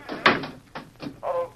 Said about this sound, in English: Door open now.